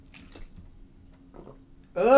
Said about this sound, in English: I wonder if listeners can hear me drinking my water. ASMR hydration.